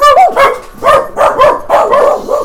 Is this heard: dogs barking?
yes